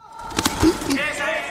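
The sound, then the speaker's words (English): A short, forceful grunt from Spain's boxer Emmanuel Reyes during a bout in the Olympic men's heavyweight boxing tournament, with a few sharp thuds and a strained vocal burst rising over a steady background murmur. “Can you tell what sport this grunt and this scream is from?”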